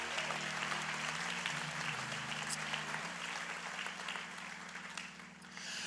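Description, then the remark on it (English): An audience applauds steadily for several seconds for the worship team, a dense wash of clapping from many hands with a low sustained musical tone humming underneath, fading slightly toward the end. “Let's give one more round of applause for our worship team this morning.”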